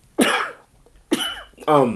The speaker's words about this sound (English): Hold on, I got to sneeze.